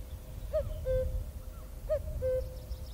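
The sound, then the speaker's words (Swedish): A common cuckoo calls twice, each a clear two-note "cuck-oo" with the second note lower, repeated about a second and a half apart over a low outdoor rumble. “Det är när man går ut i skogen och lyssnar på gökens rop.”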